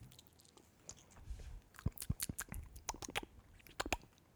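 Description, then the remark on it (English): Someone takes a quiet sip of Jack Daniel's Master Distiller Series whiskey on ice, with a quick run of sharp clicks and crackles as the cubes shift. No one speaks. “Let me take a sip.”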